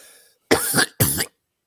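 Two loud coughs in quick succession, each a thick, phlegmy burst lasting about a third of a second, preceded by a faint tail of sound and followed by silence.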